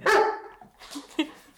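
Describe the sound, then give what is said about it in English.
A dog lets out one loud, drawn-out bark, followed by two shorter, softer barks about a second later, with no one talking. “I think now he said barks enough.”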